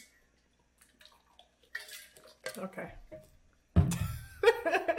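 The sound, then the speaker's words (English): Someone sips water from a glass: light clinks and handling noises, then a louder clatter as the glass is set down, with short quiet gaps between. “Can I take a sip of water?”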